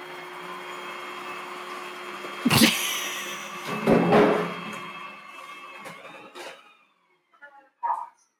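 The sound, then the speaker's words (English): A RoboVac robot vacuum cleaner from Aldi, running on a timer, whirs with a steady, mid-pitched motor hum and hiss, swelling in two brief louder bursts before cutting out, followed by a couple of soft knocks. “That was the RoboVac. It's on a timer.”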